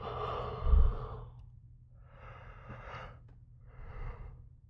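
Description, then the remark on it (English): A quiet yawn: a long breathy exhale followed by two shorter airy breaths, with no talking. “There's another yawn right there.”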